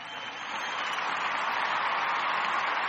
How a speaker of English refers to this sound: Here, I got another applause sound. See if this is better.